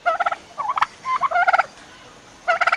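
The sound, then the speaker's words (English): A turkey gobbling sound effect: rapid, warbling bursts, a quick rattling call, a few broken gobbles in the middle, then a final fast trill, fairly loud with no talking. “Shouting and waving your arms at a ward off a turkey.”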